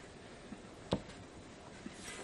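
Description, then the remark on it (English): Faint scratching of a Sharpie gel pen moving across paper, with one brief sharper tick partway through and soft strokes otherwise; no one speaks. “I love these pens. I know. She's got more pens, are they? It's like Sharpie gel pens.”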